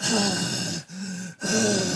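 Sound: imitated heavy breathing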